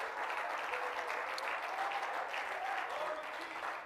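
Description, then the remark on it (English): An audience claps hands in praise of God, in sustained, dense applause, a steady wash of many overlapping claps at even loudness throughout, with faint voices blended underneath. “Oh, clap your hands and praise Him tonight.”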